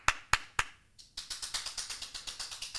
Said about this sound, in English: Round of applause for a successful first week of Patreon.